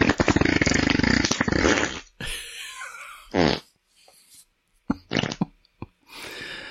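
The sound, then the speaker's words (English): A long, loud, rumbling fart rips for about two seconds, followed by several shorter, sputtering bursts and a final drawn-out trailing toot, with no talking. “Those farts had been brewing for a while.”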